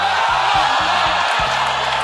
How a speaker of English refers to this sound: So if the story that we're telling takes place at a baseball game, we want to find a sound that'll put you at a baseball game. So maybe we take, you know, the sound of the ball hitting the bat and then a crowd clapping.